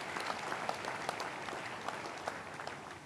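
An audience breaks into sustained applause for Jesus Christ, many hands clapping at once in a dense, steady patter, with sharper individual claps popping out above the wash.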